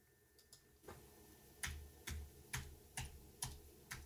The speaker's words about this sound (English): I'm not actually Googling. I was just typing random things.